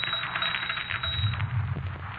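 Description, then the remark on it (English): A typewriter clatters on its own in a rapid, steady run of keystrokes, moderately loud over a muffled, hissy background, with no one speaking. “Look, I said I didn't write it, and the typewriter just said, no, I did.”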